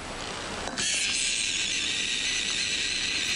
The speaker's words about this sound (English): So that's what a gecko actually sounds like. He doesn't have a British accent like in the commercials. No, that's a real gecko, yeah. And what had happened was the fella in the video had woke it up. So it was sleeping, and he just tapped on it,